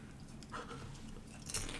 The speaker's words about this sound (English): I'm just going to munch on this churro one while you're trying to ponder.